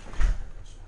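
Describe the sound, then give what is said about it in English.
A single dull thump of a door pushing shut as it is closed and locked, followed by a faint lingering rattle and quiet background noise. No one speaks. “Can one of y'all lock the door?”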